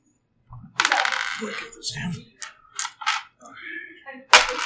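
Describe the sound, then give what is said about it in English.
Five dice clatter and tumble across a hard tabletop during a game, in a few quick bursts of sharp clicks and rattles, ending with one last bright clack, with faint voices. “So that's 5 dice.”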